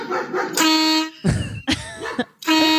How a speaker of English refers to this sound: It just honks. The person laughing is what's making me... It just honks at it. So funny. It just honks right back at it.